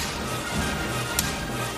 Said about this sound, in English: Oh! Oh. Gave him a slap in the kisser.